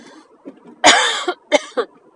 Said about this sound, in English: 90-year-old cough. Hashtag 90-year-old cough is back.